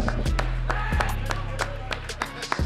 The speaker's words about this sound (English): Hey, Bearcat fans, can we all have a big round of applause for one of our Bearcat greats, AD Jackson, for coming in tonight? Thank you. And can we also have a round of applause for showing up another one of our Bearcat greats, Terrace Gibson?